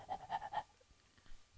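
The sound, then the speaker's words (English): A person imitates a panting dog with a quick run of about five rhythmic, breathy huffs, then trails off into near silence with a faint breath at the end. “It's like taking a dog out for a walk.”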